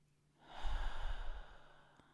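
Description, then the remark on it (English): A slow, steady exhale through the nose during a guided breathing meditation, soft, rising in a breathy rush and fading out over about a second and a half, with no voice. “Breathing out,”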